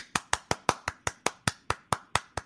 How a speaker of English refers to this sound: I had the day off today, so I did laundry, folded it, and put it away all in one day. I will pause and wait for a round of applause.